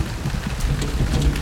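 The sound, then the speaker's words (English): A storm with steady, dense rain hissing over a continuous deep rumble of thunder, loud and unbroken for the whole moment, with no voices. “There are some debris from a building site has been tossed about by the storm.”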